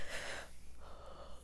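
human body sound, yawn

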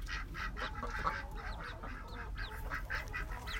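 bird, ducks quacking

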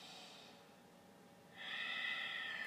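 human body sound, ujjayi breathing

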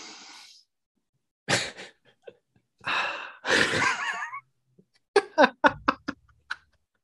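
human body sound, sniffing a drink

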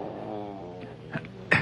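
animal, cat vocalizing

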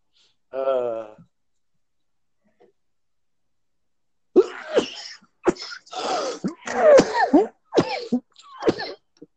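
human body sound, sneeze or cough

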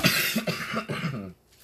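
human body sound, a person coughing

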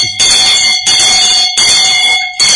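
signal or alarm, bell ringing

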